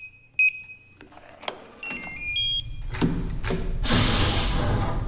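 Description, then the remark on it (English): A few electronic beeps and short stepped tones, a couple of sharp clicks, then a loud sustained hissing whoosh like a sci-fi sliding door opening: a sound effect used for a key card door, like a Trek door. No one speaks. “I've got a new key card door now.”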